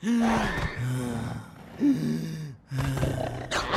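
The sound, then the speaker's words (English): A voice imitates heavy, labored breathing as a symptom of coronavirus: loud gasping inhales alternate with groaning exhales, repeating in a steady, strained rhythm with no speech. “Third, trouble breathing. It might even sound like this.”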